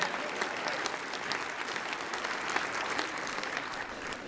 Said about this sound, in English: A little round of applause for all those fathers out there.